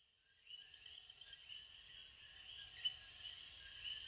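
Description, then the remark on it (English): A dense nighttime chorus of coquí frogs in Las Marias, Puerto Rico, their high two-note chirps repeating steadily over a constant shrill buzz of insects, with no voices present. “We travel to Las Marias, Puerto Rico now with Coquí frogs.”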